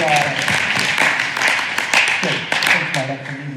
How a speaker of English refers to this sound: Now you can clap after that.